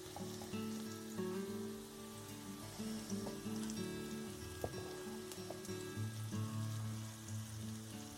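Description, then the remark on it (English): Onions gently simmer in olive oil in a pan, a steady soft crackle rather than a frying, with a faint clink or scrape now and then as they're moved around a little. No one speaks. “So you can hear the gentle simmering away of that onion.”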